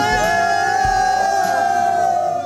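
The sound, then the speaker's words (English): A crowd of miners in India, rescued after 17 days trapped in a tunnel, cheers and shouts together celebrating the rescue in a loud, sustained roar, many voices blending into rising, wavering yells with a few low thumps underneath. “Take a listen to miners celebrating the rescue.”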